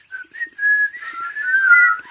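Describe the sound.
A girl whistles to the birds in the trees, a short, wavering melody, the clear tone sliding up and down in a few connected phrases with brief breaths between them, and no talking.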